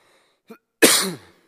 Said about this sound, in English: Excuse me, I'm battling a cough.